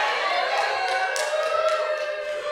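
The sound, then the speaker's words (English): A large audience claps steadily, a dense, continuous wash of applause that stays loud and even throughout, with scattered sharper claps standing out from the crowd noise. “why is there an audience clapping?”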